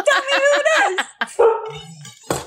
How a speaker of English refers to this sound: She's got her dogs, too. My dog's scared. Her mad dogs.